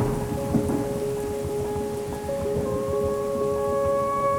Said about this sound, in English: It is a stormy summer afternoon.